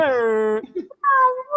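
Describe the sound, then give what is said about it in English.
A loud howl in two drawn-out tonal cries: a steady low wail, a brief whimpering break, then a higher sustained cry that trails off. “Sleepy Howl. My bad.”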